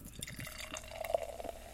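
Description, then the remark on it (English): Barley wine (9.5%) glugs and splashes steadily from a 16-ounce crowler can filled at Channel Brewing into a glass, a bubbly pour of dark brown beer with small drips and a rising fizzy trickle, with no voices over it. “And the pour?”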